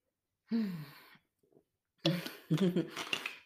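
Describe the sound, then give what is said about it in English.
Someone pauses to drink water: a breathy voiced sigh, a faint soft gulp, then a few louder, rough exhalations that trail off, with no speech. “Hold on, let me take a water break.”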